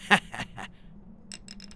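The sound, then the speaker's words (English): Sleigh bells jingle in a few bright, irregular shakes, then a quicker run of light, high jingles toward the end, over a faint low hum. “Is that the sound of sleigh bells?”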